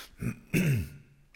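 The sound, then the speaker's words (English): A close, loud cough right at the microphone: a short rough burst, then a heavier throaty hack that trails off, with no one talking. “Cough off the mic as well.”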